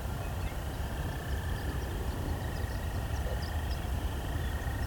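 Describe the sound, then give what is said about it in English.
A dense chorus of chorus frogs trills continuously by ditches near a quarry, forming a steady droning pulse beneath heavy wind rumble, with faint higher chirps scattered over the top. “Of course, we can hear the chorus frogs as well.”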